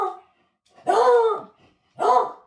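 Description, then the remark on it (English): A dog named Archie barks twice, loud, full-throated woofs about a second apart, with the tail of an earlier bark at the start and no talking. “We have a dog interruption.”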